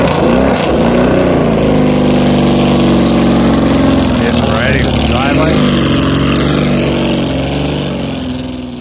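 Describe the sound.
A Porsche 935 race car engine idles loudly, a deep, steady rumble with a rough, throbbing tone that holds throughout, slightly fading at the end, with faint voices underneath.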